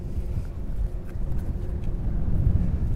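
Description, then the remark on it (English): A steady rush of wind buffets the microphone outdoors, a low, rumbling roar that swells slightly toward the end, with a faint engine-like drone underneath. “Ooh, the wind.”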